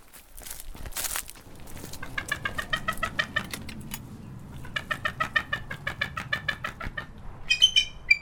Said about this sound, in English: So there's a bit of commotion here, and I recognize the participants. This is a bald eagle? A bald eagle is correct. Yes, she's a little chatty because, unlike most of the raptors, she is more social. The bald eagles tend to hang out in groups